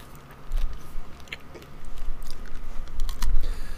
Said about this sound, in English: Okay, so you're telling me there's brownie on the inside. Okay. It's definitely got a, chewy centre. Yeah, a solid centre. I tried to, chew straight through the middle. Could not be done.